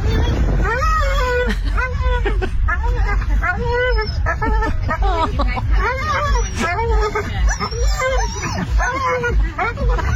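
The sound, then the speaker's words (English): Three dogs in a car heading along the bypass toward the Waterways Dog Park whine excitedly and nonstop, a jumble of high, wavering cries that rise and fall, with a few louder yelps mixed in over a steady low rumble. “There's three of them in there. There's like a little whines, a couple of loud, and it's like, it's just like, ooh, you guys, I think this is a dog park.”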